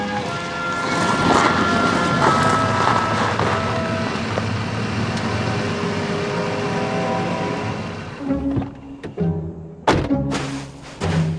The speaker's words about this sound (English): Here comes Farwell's car.